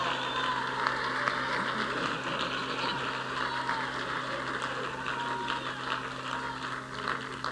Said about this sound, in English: And that's why we are clapping, and that's why we are shouting, and that's why we are singing, and that's why we are preaching, and that's why we're getting involved the way we get involved.